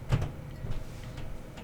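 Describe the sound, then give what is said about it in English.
Faint wooden creaks from floorboards underfoot, a few low groans and soft ticks spread out, with no talking. “I can hear the floors creaking in here.”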